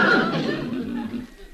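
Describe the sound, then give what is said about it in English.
A street ice cream vendor's horse, being fed ice cream, gives a short, fairly loud whinny that starts high and slides downward, fading over about a second and a half. “It's hard to refuse a horse.”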